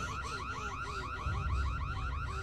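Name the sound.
alarm going off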